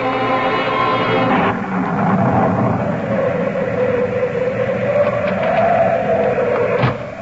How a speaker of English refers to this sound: I was so frightened, the lights went out. That's just the storm. It'll be all right.